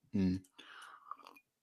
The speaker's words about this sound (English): Sorry, just took a sip of my tea there, an unfortunate timing.